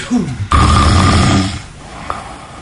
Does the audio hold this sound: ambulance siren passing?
no